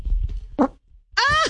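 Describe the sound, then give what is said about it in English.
A short, buzzy little fart from a person gassy from Metamucil sounds near the end, preceded by a low rumbling noise and a brief breathy puff. Nobody speaks. “That was a little one. Just a little toot.”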